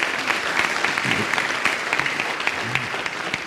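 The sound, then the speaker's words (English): Sustained applause from a sizable crowd for the Speaker's leadership on a water issue, a dense, even wash of clapping that stays steady and fairly loud throughout, with a few faint voices murmuring underneath. “Speaker, first off, I think there was a missed opportunity to truly, truly thank you with a significant round of applause for your leadership on this water issue.”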